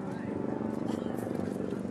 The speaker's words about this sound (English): Nick, I would imagine that this is getting closer to you as we are hearing the helicopter and seeing it overhead.